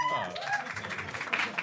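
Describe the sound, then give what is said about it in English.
A brief burst of audience clapping, dense and crowd-sized, mixed with scattered voices and cheers over it. “I will not entertain these people with the opportunities to clap further.”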